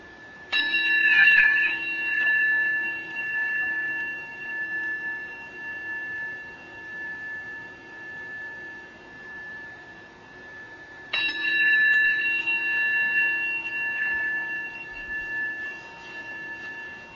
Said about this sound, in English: And we'll receive the sound of the bell.